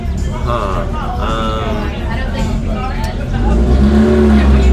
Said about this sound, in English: This car peels out in front of us.